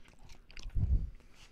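Chewing of spicy beef jerky: a few moist, tearing chomps and soft crunches, loudest in a thick burst midway, with no one speaking.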